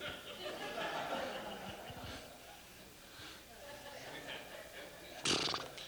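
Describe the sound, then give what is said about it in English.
A person imitates a dog barking with a few short, rough vocal bursts, and faint chuckling can be heard around it, followed by a sharp louder burst near the end. “You barking to me?”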